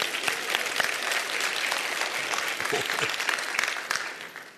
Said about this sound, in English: How many grandparents do we have here? Oh my goodness. Wonderful. Hey, you ought to applaud yourself. Come on.